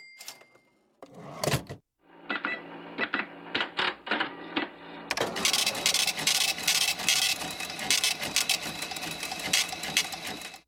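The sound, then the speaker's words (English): Mechanical cash register ringing up a sale: a few sharp key clunks and rattling strokes, then a continuous whirring, clattering mechanism that runs loudly to the end, with no voices. “Okay, that's the cash register, remember?”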